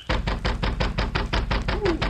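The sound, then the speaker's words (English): Heavy pounding on the wooden door of a cabin one night in midsummer: about ten loud, deep thuds in a rapid, steady rhythm lasting around two seconds, with no voices. “But neither of these facts were connected with the heavy pounding on the door of Charlie's cabin one night in midsummer.”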